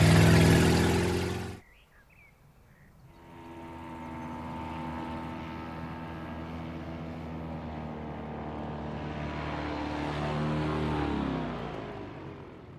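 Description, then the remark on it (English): A loud burst of noise cuts off, then a fanboat engine is started back up with a steady droning hum and revs higher toward the end before easing off as the boat heads back to the dock, with no talking. “He started his engine back up and returned over to the dock to try and get something done about this situation he found himself in.”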